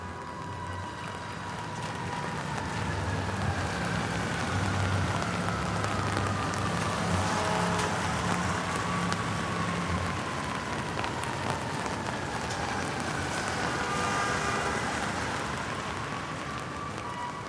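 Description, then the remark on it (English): Steady rain falls across a city street in Manhattan, a dense hiss of drops on hard surfaces, with a low traffic rumble and faint passing-vehicle tones underneath throughout. “Do you still hear rain in Manhattan?”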